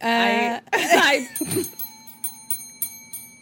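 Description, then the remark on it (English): After a short burst of voice, a small bell rings out in a quick series of about seven bright, high dings, its clear tone lingering between strikes. “I got it. Got the bell.”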